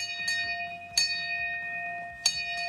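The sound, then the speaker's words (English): A bell is struck three times to mark Jim Donovan's last radiation treatment, the first two strikes about a second apart and the third after a longer pause, each clear ring sustaining and overlapping, with no voices. “My last radiation treatment, 25 up, 25 down. What a team I had. What an honor. Ring the bell 3 times.”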